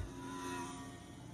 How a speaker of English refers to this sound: Car running through pit road. I think one's pitting, actually.